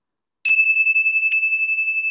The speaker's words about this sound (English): we're all gathered here together by the side of the lake, known as the Ming Tang or the Bright Hall, just welcoming all of the positive universal forces into our sacred space, and I'm going to ring my bells of hope.